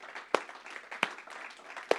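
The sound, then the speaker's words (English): A church audience claps to thank a speaker for last week's message, with a soft, steady wash of applause and three sharp, louder handclaps standing out at uneven intervals. No one speaks. “And you're just going to have to clap a little better than that because he did a good job.”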